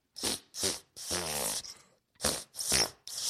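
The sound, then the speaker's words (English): A voice blows buzzy mouth farts to play the Christmas carol Jingle Bells: two short blasts, a long wavering one with shifting pitch, then three more short bursts after a brief pause, loud and alone. “As we go out, I'd like to do an ode with a mouth fart. So we're going to do a Christmas carol here quickly.”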